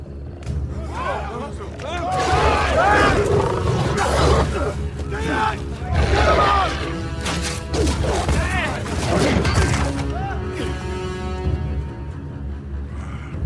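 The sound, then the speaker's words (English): Loud, layered warg creature howls and snarling roars from a film sound effect, cinematic, rising and falling in repeated bursts for several seconds before easing into a thinner, fading tail. “Was that a wolf? Are there wolves out there? Wolves? No, that is not a wolf.”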